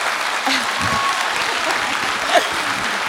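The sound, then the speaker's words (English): A steady round of applause for the speaker's supportive husband, dense and even, with many hands clapping at once and faint voices mixed into the clatter for about three seconds. “And so what is something that, you know, he needs a round of applause for being an absolute supportive man, because this man will support me if I quit my job.”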